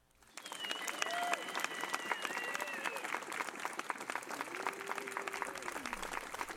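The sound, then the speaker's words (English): An audience breaks into loud, steady applause for a stand-up comedian coming on, rolling on for several seconds, with a few voices whooping and cheering over the dense clapping. “Awful nice of y'all to give me applause before you even know if I'm funny or not.”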